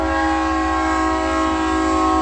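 A passing Union Pacific train sounds its horn in one long, unbroken blast, a loud steady chord of layered tones held over a low rumble from the train, with no one talking.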